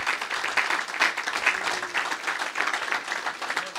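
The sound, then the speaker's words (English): A crowd claps steadily, many hands blending into a dense, bright patter that holds at an even loudness throughout, with no voices standing out. “give hallelujah. Him a hand clap.”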